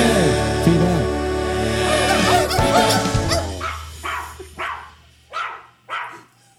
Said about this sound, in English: We woke up the other coyotes in the mountains.